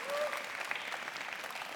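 Enthusiastic applause from a crowd at Eagle Church in central Indiana after its official regathering day is announced, a dense, steady wash of many hands clapping at once, with a brief high tone rising out of it near the start.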